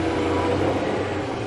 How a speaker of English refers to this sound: Goodbye, truck.